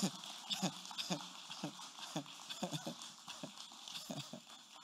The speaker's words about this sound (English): If a woman gave birth to you, put your hands together. Those who are not clapping, I don't know where you came from.